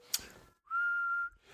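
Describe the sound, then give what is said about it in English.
A person whistles a single sustained, steady, clear note for about half a second, preceded by a brief breathy sound and a moment of quiet. “I can whistle.”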